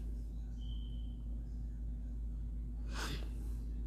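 A single short, sharp sniff, breaking a quiet stretch with a steady low hum underneath and no talking.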